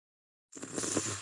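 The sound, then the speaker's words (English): A voice imitates heavy, raspy breathing like Darth Vader's, for Michael Myers: after a moment of silence, a single loud, hissing breath starts abruptly and holds steady for under a second. “And he's breathing just like Darth Vader.”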